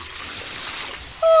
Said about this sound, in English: Give me your water bottle. I'll fill it up with some of the fountain water at the front of the temple.